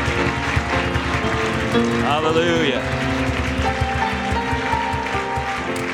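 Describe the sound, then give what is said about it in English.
A crowd claps steadily together in praise of the Lord, the dense patter mixed with sustained music, while a voice calls out over the top. “Let's give the Lord a hand clap of praise tonight.”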